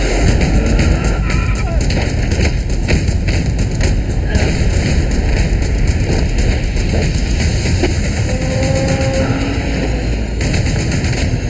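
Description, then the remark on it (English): Loud, dense action from the trailer for the film The Raid 2 (Berandal): gunfire and fighting, with rapid sharp bursts layered over a constant rumbling roar, plus faint voices mixed in. “You just need like bullet noises and like flesh smacking into other flesh and maybe some screaming.”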